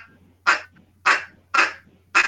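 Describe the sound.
Four short, nasal duck quacks from a duck call, evenly spaced about half a second apart, moderately loud with a faint low hum beneath and no talking.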